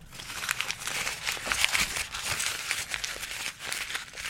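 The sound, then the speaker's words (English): Continuous crinkling and crackling of a piece of paper being crumpled up, with dense irregular rustles filling the whole stretch and no speech over it. “In my anger, I'm just going to crumple up this piece of paper.”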